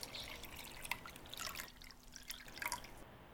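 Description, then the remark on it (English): A glass of Mastika is poured in quiet, splashy trickles with small dripping sounds, pausing briefly midway before a final short pour. No one speaks. “And I just have to get here another glass of Mastika.”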